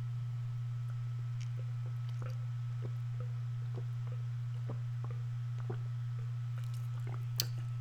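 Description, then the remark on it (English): Someone drinks water, with faint wet gulps and small swallowing clicks scattered irregularly over a steady low electrical hum; nobody speaks. “Because I got to stop every 5 seconds and drink some more water.”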